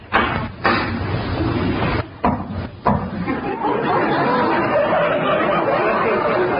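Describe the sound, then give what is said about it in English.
A captain raps his pipe a few times to knock out some of its tobacco, giving several sharp, hollow taps spaced irregularly over a steady rushing background with faint murmuring voices. “Well, if you don't mind, I'll smoke my pipe. What's a captain without a pipe? I'll just knock out some of this tobacco.”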